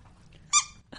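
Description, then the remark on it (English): A squeaky elephant dog toy gives one loud, high-pitched squeak, with a second squeak starting right at the end over a low background rumble. “I love these dog toys.”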